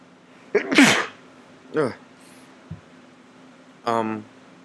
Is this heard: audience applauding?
no